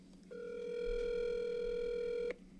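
A single ringback tone from an outgoing phone call: one steady, buzzy electronic ring lasting about two seconds, with no talking over it.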